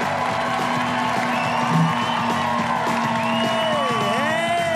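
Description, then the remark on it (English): A comedy show audience claps and cheers steadily for a comedian being introduced, with whoops and shouted voices rising over a dense, continuous wash of applause that holds an even loudness throughout. “Who wouldn't want applause, right?”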